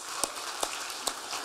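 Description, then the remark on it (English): A church audience applauds the worship team, a steady, fairly soft patter of many hands with a few sharper individual claps standing out. No one speaks. “Our worship team, was our worship team amazing today? Yeah, let's give it up for them.”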